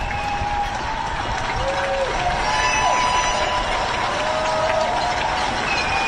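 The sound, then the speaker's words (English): Residents of Vancouver's West End cheer from their high-rise balconies at night in support of COVID-19 healthcare workers: a steady, loud wash of clapping, shouting and whooping, with several high whistles rising above it, holding at the same level throughout. “Residents in Vancouver's West End are cheering from their balconies every night in support of the healthcare workers on the front line”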